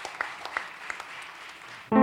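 Audience applause as a performer gets started on a tribute song: a steady wash of many hands clapping with a few sharper individual claps popping out, fairly soft, then abruptly cut off by a loud, buzzy tonal sound at the end.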